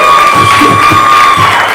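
A crowd cheers and applauds loudly and steadily, with whoops and a high whistle riding over dense clapping throughout.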